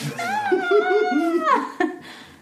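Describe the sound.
A person lets out a drawn-out, wavering meow-like wail, imitating a cat, followed by a brief sharp click and a faint trailing breath; loud.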